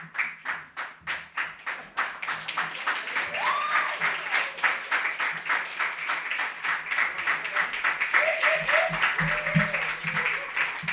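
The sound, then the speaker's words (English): A crowd at an open mic poetry reading applauds steadily for about eleven seconds as a reader is introduced, dense overlapping hand claps with a few faint voices and cheers mixed in toward the end. “Love an extended applause.”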